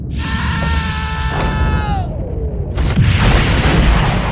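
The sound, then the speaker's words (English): A high, buzzing electronic whine holds for about two seconds, then slides downward before a loud explosion from a satellite's laser beam striking from space bursts in and rolls on as a sustained roaring rumble. “And then that laser beam just focuses in on him from space. And there's a scream and a huge, huge explosion.”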